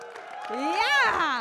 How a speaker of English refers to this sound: Yeah, they're worthy of woos and claps.